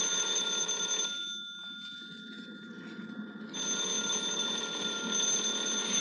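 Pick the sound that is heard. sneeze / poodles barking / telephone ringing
telephone ringing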